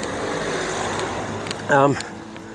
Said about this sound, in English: here comes a security car. Just driving past me, I'll give him a wave.